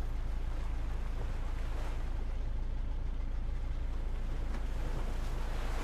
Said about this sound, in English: The boat rumbled away. Twin cylinder diesel engine chugging away roughly below deck. Distant sound for something so close.